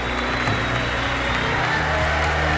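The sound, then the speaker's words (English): A large convention hall full of people bursts into sustained applause with catcalls and whistles. The clapping and crowd noise form a dense, continuous roar that stays loud and steady throughout, with no clear pause or single voice standing out. “The hall erupts in applause, catcalls, whistles.”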